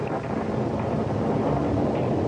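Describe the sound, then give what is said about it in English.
A thunderstorm rages with heavy wind, a dense, continuous roar with deep rumbling underneath and a steady rush across the whole clip, fairly loud, with no voices. “One minute, the storm seemed vague and remote, and the next minute, like another planet coming down through the roof.”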